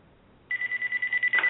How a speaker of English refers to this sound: Wouldn't you know it, just before the program's about to end, the cell phone that I didn't turn off goes off. Sorry about that.